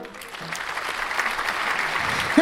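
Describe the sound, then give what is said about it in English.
A burst of canned crowd applause played as a sound effect at a show intro, dense and fairly loud, with many hands clapping at once in a continuous wash that swells slightly toward the end. “I almost forgot to hit the applause.”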